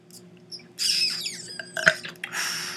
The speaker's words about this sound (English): I burped up some goulash. Ew.